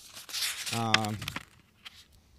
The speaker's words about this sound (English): That's tearing the clue. A sheet of paper out of a binder.